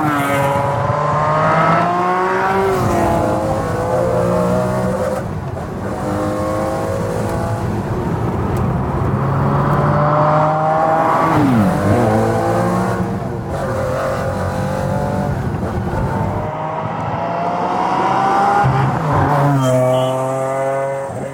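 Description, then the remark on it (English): A high-revving V12 sports car engine screams through repeated climbs in pitch, with rising harmonic sweeps and brief drops between gear changes, loud and continuous with no talking. “What other V12 sound that good? I mean, McLaren F1.”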